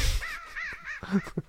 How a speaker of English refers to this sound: This is an actual bird. A robin.